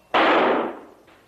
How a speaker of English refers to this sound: Yeah, he's like, usually it's either you hear them faint or you hear a shot.